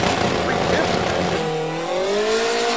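A drag racing Mustang's engine roars loudly on a solo pass, popping as it shifts through the gears, its pitch climbing and dropping, with a rough, crackling edge throughout the short burst.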